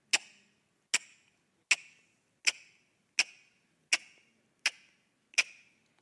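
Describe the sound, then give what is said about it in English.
A clock ticks steadily, eight crisp, evenly spaced ticks each followed by a short decay. The sound is clear, with no voices or other sounds around it. “It's a clock. It's an eternal clock that's just ticking.”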